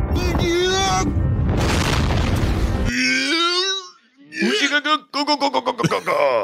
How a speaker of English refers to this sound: And it's when Cillian Murphy in a giant suit fell down and screamed. And so I captured it because spit all over the place, too. Yeah. Because even the sound's funny, so check it out.